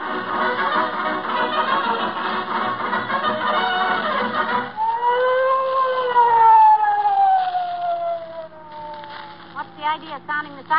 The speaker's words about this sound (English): Sounding the siren, Officer Mahoney. We always approach the scene of a crime blowing the siren